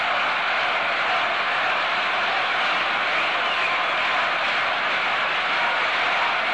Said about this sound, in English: This crowd came roaring to its feet.